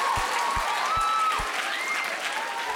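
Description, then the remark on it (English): A crowd applauds steadily, a dense, even wash of clapping with a few low thumps and faint whistle-like tones mixed in, holding at a constant level throughout. “And I want to tell you, yeah, you can clap if you like.”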